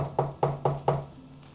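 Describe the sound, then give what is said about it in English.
Four firm knocks on the wooden door of an ordinary white stone house, in a quick, even rhythm, fairly loud, with a resonant hollow thud to each strike and no voices. “Looks like an ordinary house with a nice wooden door. You can knock on the door.”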